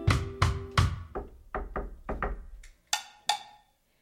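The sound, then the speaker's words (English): Someone knocks on a door: three heavy, booming knocks, then four quicker, softer raps, and two sharper, brighter knocks to finish, with no voices. “Opportunity is knocking at your door.”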